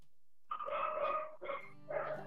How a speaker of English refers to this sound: That is one of Rashawn Gordon's dogs